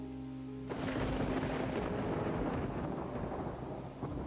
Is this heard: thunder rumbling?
yes